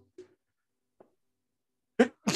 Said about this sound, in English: Oh, I gotta sneeze now.